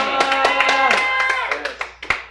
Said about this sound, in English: You're not going to know what I'm going to say, or you wouldn't clap.